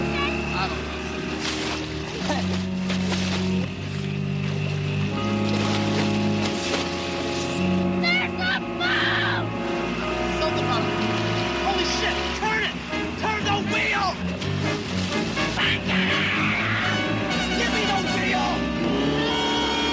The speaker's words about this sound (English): Hey, guys, it's a boat. Let's hitch a ride. Hey, over here! Ooh. Whoa! Man, that boat's coming in really fucking fast! Holy shit!